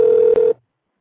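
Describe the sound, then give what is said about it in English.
A telephone call to Senator Mike Gravel rings while connecting: one loud, steady electronic ring tone lasting about half a second, with a brief flicker partway through, then it cuts off into silence. “Just give it a moment to connect, and we'll be good to go.”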